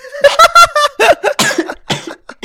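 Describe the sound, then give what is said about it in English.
A loud coughing fit: a rapid string of harsh, throaty bursts tumbling one after another over a couple of seconds, with no talking in between. “I legitimately am not sure what is funny about me coughing.”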